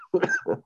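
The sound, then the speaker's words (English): A loud cough in two quick bursts, a harsh first hack followed by a shorter second one, with no talking around it. “Just lose the cough and you can do it again, man.”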